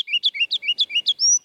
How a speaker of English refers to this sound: The ruby-crowned kinglet, too, that bright-headed sprite of the treetops, would be downright deafening if it were just a little bigger.